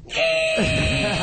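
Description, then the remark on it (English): A voice mimics the squealing brakes of a car as they are hit, one loud, sustained, shrill screech lasting about a second, steady in pitch over a rough, wavering lower buzz. “And here's what the brakes sound like when you hit them.”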